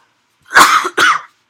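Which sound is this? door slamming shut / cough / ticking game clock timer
cough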